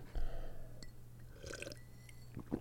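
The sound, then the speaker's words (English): Someone takes a quick drink of water, with soft sipping and swallowing sounds, faint wet clicks and a small gulp near the end, against a low background hum. “Well, let me clear my throat and take a drink of water.”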